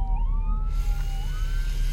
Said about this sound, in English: Here goes an ambulance.